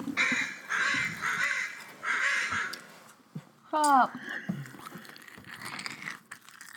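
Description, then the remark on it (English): Loud crunching of cereal being taste-tested, in several chewy bursts over the first few seconds, followed by a short vocal sound and quieter, continued chewing. “It does have a wicked crunch.”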